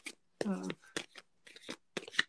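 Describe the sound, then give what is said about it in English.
Quick bursts of papery riffling, like a deck of cards being shuffled, come in short uneven spurts while a person speaks over them. “So I'm shuffling, and I just like to have some of that energy in there.”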